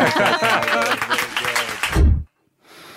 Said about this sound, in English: I thought everyone else was going to clap. Sorry.